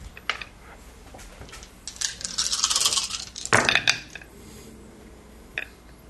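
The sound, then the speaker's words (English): A handful of dice, four yellow and one green against two purple and one red, rattle and clatter across a hard surface for a couple of seconds, a busy burst of clicks, with a few stray taps before and after. “If you could please give me, four yellow and a green. And it is going to be against, two purple and a red.”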